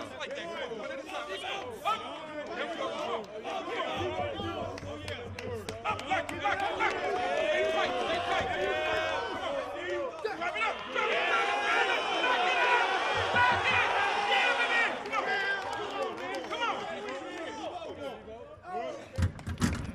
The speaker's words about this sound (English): See, that's the drill you was talking about, Mose. Where everybody cheering them on. You hear everybody in the background.